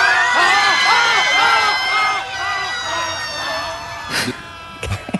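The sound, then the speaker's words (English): A scream choir at the Playland amusement park screams together in unison, their high voices swelling and dipping in a steady run of overlapping wails before breaking off into a few short, scattered yells. “The world's first scream choir performs at Playland, and it's a screaming masterpiece.”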